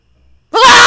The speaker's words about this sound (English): I'm going to insert the noise of the scream when he comes. He screams. Oh, yeah, that'll be good. And it is a scream. And I'm going to do it right here.